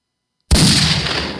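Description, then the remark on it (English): A single loud cannon blast erupts abruptly after a moment of silence, its deep boom spreading into a long, rumbling roar that slowly fades. “Shoot him out of the cannon.”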